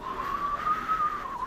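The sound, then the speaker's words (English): A person whistles a long, steady, slightly wavering note, imitating the howl of wind. The tone is fairly quiet, with no talking. “The wind is whistling ominously.”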